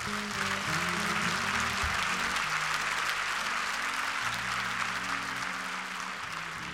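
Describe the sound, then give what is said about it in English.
An audience claps hands in sustained, dense applause, a steady wash of many overlapping claps over a low hum of murmuring voices and organ-like tones. “Clap your hands, everybody.”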